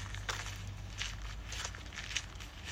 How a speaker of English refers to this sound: No, it's not a rabbit chewing on lettuce. It's actually supposed to be the sound effect of somebody walking because of the stories I'm going to go over are about spooky things in people's homes.